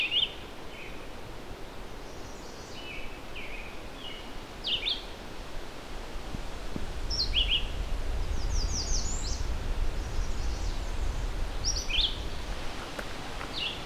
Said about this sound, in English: We've got a red-eyed vireo here. They're also not very picky about territory, other than they want some fairly sizable trees around.